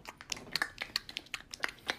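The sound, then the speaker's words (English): A voice imitates a fish slapping with a quick, irregular run of about a dozen wet, smacking mouth clicks over two seconds, sharp and moderately loud, with no talking. “I want slapping, you to make that noise too. Slapping the fish.”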